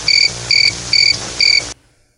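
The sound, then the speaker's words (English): Crickets chirp in four steady, evenly spaced bursts, each a bright high trill, fairly loud, before cutting off abruptly into silence. No voices are heard. “Do you want me to do the crickets job?”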